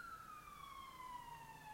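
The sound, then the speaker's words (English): An emergency vehicle siren wails outside, its steady tone sliding slowly downward as it passes, somewhat faint over low traffic rumble, with no one speaking. “I'm really sorry if you guys can hear the siren.”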